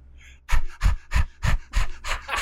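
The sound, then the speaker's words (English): A person imitates a dog's panting with six quick, loud, breathy huffs in a steady rhythm, each a broad burst of air, with no words spoken. “I'm a dog, I'm a dog, I'm a dog.”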